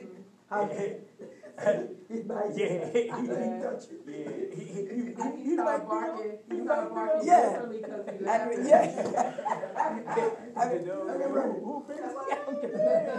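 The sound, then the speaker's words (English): A person's voice imitates a dog barking behind a fence, with repeated barks and yips in a steady run. The voice is fairly loud, with bits of chuckling mixed in. “He's barking.”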